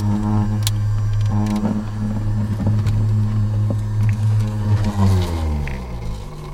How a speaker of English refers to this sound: Once it's drawn, the snake's blood is spun in a centrifuge that runs off the cigarette lighter in the team's truck.